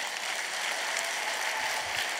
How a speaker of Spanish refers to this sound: Era un aplauso al Señor.